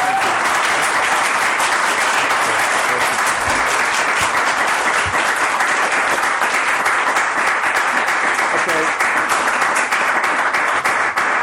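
Sustained, dense applause from a sizeable audience at a film screening, many hands clapping at once in a steady, fairly loud wash that continues for about eleven seconds without any talking.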